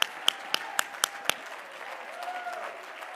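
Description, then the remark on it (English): An audience claps hands in unison in praise of God during worship, six sharp, steady beats in quick rhythm that stop after about a second, leaving a low murmur of voices and faint tones. “Come on, clap your hands, all your people.”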